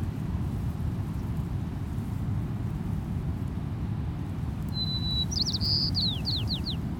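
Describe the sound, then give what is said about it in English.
A white-crowned sparrow on coastal dunes sings once near the end: a clear whistled note followed by a quick series of buzzy, descending trills, set against a steady low rumble of the more distant ocean. “Here's our first bird species of the day, a white-crowned sparrow.”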